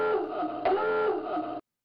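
A submarine dive alarm sound effect, cued on purpose: one loud, buzzy klaxon blast with a wavering, rising-and-falling pitch, lasting about a second and a half before cutting off abruptly. No voices.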